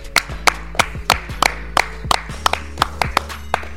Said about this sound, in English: Clap it up.